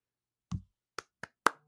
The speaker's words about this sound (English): Little small light clap, little light clap.